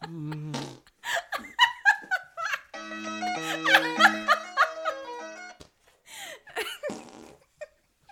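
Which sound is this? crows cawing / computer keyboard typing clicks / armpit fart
armpit fart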